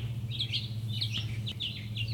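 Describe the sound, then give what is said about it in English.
Birds chirp repeatedly in short, bright bursts over a steady low outdoor hum outside a house, a continuous busy chorus with no one speaking. “So my family's making a lot of noise in the house today, and I thought it'd be easier to do it out here, and thought maybe you wouldn't mind a little bit of a chirping bird ambience.”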